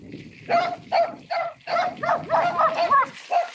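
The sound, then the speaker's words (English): Small dogs belonging to people on a porch yap in quick, uneven bursts at a gas station stop, about eight sharp high-pitched barks in a few seconds, loud, with no one talking over them. “So it's like, there's little dogs.”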